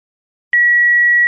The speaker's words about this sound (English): Sorry we can't take your call right now, but please leave your name and a great story after the beep.